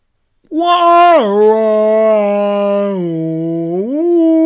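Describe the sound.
A person imitates a monkey call with one long, loud, sustained vocal hoot that slides down in pitch, holds steady, then swoops back up at the end, with no other sounds around it.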